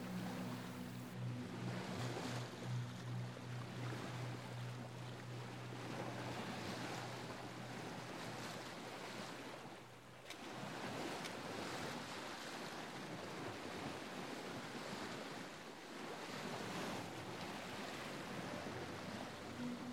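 A boat being steered towards the shore churns steadily through open ocean water, waves and spray rushing loudly and continuously past, with a low engine hum underneath and gusts of wind buffeting the microphone.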